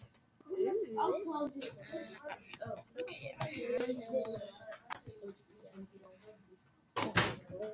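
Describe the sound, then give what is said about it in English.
A door shuts with a single loud, sharp bang near the end, after several seconds of people talking. “Why is the door open? I'll close it.”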